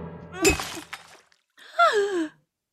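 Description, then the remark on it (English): A glass of water gets knocked over with a sudden clatter and splash, trailing off briefly, then a voice lets out a rising, wavering cry of dismay. “Do watch out for the glass of water.”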